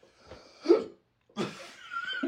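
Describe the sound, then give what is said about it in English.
A few sharp hiccups: abrupt vocal gulps in an uneven rhythm, separated by short breathy pauses, with no talking. “Because I have hiccups.”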